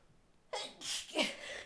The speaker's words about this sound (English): Sorry, I got the sneezes.